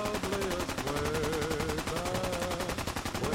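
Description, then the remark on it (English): Relentless rapid-fire video game gunfire rattles on without a break, dense and loud, with a faint wavering tone running underneath the barrage. “Are we just stuck on constant gunfire?”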